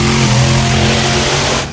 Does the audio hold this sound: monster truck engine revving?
yes